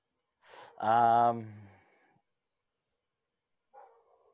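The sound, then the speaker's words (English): A single loud, harsh bark from a dog outside rings out with a raspy onset, followed by quiet and then a faint short sound near the end. “There's a dog just barking its head off outside, bro.”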